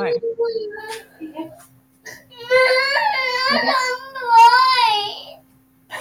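A toddler boy cries loudly, a couple of short whimpers giving way to long, sustained wails that rise and fall over several seconds. He is upset because an iPad's screen brightness isn't bright enough.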